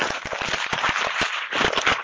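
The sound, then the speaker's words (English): Paper being crumpled by hand in a studio as a sound effect, a dense run of irregular crisp crackles and rustles that keeps going for about two seconds at a steady, moderate loudness, with no voices. “So yeah, good old fashioned paper crumbling.”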